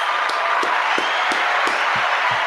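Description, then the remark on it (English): Rhythmic clapping as Fox Sports' Big Smitty is introduced. It is a steady beat of sharp claps about three per second, over a dense, hissy wash of noise that resembles a crowd applauding. No one speaks. “Clap it up for Big Smitty.”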